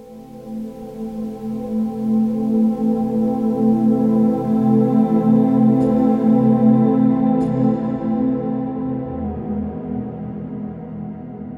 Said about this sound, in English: So let's begin with the pad sound, which has a drone effect in the background throughout the track. Here is the gentle background pad on its own.